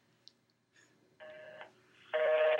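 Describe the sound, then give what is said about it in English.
A phone on speaker dials out to an old pro wrestling report phone line: a few soft electronic beeps, then a steady tone and a louder, buzzy tone at the end. No one speaks, and the sound is clear. “Does it still work? No, I don't think so. Give it a shot. Put it on a speaker.”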